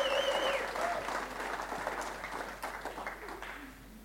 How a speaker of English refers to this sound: Come on, let's give him another round of applause and a cheer.